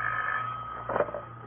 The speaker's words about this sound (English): As I came up the stairs, I heard my phone ringing.